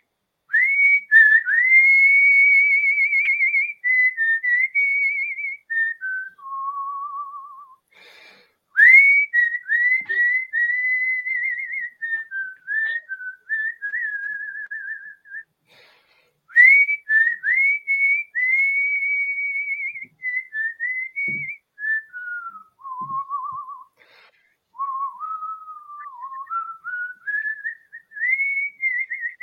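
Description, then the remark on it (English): A person whistles a melody with clear, pure tones, gliding between sustained notes and quick ornamented runs, loud, with brief pauses for breath and no talking. “Cause it's musical whistling.”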